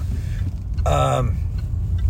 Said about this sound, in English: Oh, there's one of those pickup trucks that I hate. The four-door pickup truck with the four-foot bed. And it's like, what is that? Is that a giant El Camino? Is it a station wagon that lost its fucking hatchback?